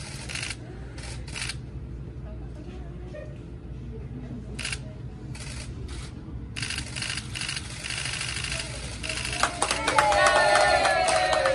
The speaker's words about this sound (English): They're applauding. Look at this.